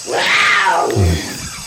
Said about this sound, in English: What is... is that some sort of wildcat? Looks like the wildcat knows where... do you know where the water is, wildcat?